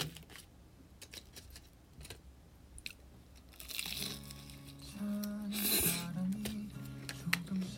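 Crisp crunching of fried food comes in a series of sharp, irregular bites, then gives way to a louder, sustained voice-like murmur over continued faint chewing.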